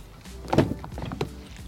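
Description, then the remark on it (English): A car door shuts with one solid, muffled thunk, followed by a few faint clicks and light rattles. Nobody speaks. “Cool, let's get in the car.”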